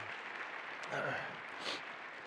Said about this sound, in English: And I think it would be totally appropriate if we just gave them a round of applause here today and thank them for what they do.